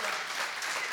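A crowd claps steadily, a dense wash of applause that stays loud and even for the whole brief moment with no gaps.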